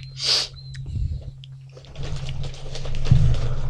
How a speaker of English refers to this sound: Nose. I do have to blow my nose now.